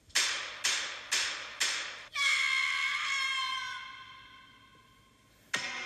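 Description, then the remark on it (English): Four loud, sharp gunshots fire in an even rhythm, about half a second apart, each with a brief decaying tail, followed by a sustained, ringing musical chord that slowly fades before another sharp hit. “Starts with gunshots. 4 gunshots.”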